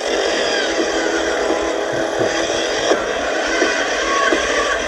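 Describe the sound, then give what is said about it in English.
A gas-powered auger with a 3-foot-long bit drills into dirt to break it up. Its small engine drones steadily and loudly the whole time, with a rough mechanical buzz and occasional faint knocks from the bit. “This gas-powered auger with a 3 foot long bit helps break up the dirt.”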